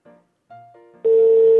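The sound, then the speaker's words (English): Telephone line tones on a call to Bangladesh: a couple of short, quieter electronic beeps, then a loud, steady ringing tone that holds to the end, with no voices. The person being called is not picking up, and there are long pauses between rings. “If you're just joining me, he is not picking up his phone. There's these weird long pauses between rings.”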